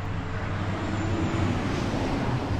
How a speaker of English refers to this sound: And there's the trucks. And there's trucks.